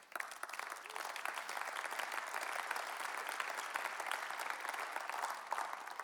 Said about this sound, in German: Es ist gut, wenn er jetzt noch klatscht, weil jetzt kommt den Schwierigen, oder?